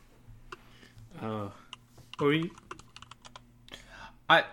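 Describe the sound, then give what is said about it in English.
Irregular clacking keystrokes on a computer keyboard as someone pulls up a Domino's order, fairly crisp, with short bursts of a voice breaking in between the typing. “I was reaching for the keyboard because I was going to pull up our Domino's order to make sure it's not on its way yet.”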